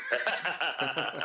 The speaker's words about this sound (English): There's your horse, Dave. It's yeah. Waiting for you.